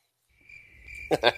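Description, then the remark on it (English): Crickets chirp in a thin, steady high-pitched trill that fades in quietly from silence, then a few louder, rougher chirps burst in at the end. “No, no crickets, nothing.”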